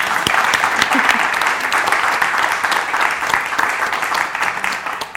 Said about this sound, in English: So that's me done. A little applause.